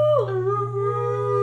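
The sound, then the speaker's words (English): A person imitates a howl: one sustained, rich-toned cry that slides down in pitch at the start, then holds steady and fairly loud for over a second, with no other talking. “No, actually, you just howl.”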